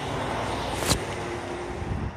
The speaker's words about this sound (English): Sorry, another truck.